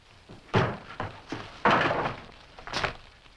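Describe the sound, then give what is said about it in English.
A door bursts open with a loud bang, surrounded by a few sharp wooden thumps and clatters spread over a few seconds, with no voices. “And then Maggie is right there, center stage, at the table, when the door flies open again.”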